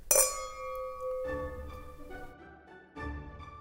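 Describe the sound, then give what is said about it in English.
A single bright clink of two wine glasses touching in a toast, its clear ringing tone lingering and slowly fading while soft low rumbles and muffled movement sounds continue underneath. “share these two glasses of sure. wine, and I'm looking forward to many more. Awesome. So, thanks, Brian. Appreciate it. Cheers, brother. Cheers.”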